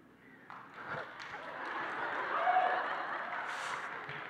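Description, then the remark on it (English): Audience applause breaks out, a dense wash of many hands clapping that swells steadily and holds strong for a few seconds, with no voices over it. “I had no idea that would get an applause, but it struck a nerve.”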